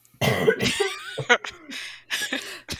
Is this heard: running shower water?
no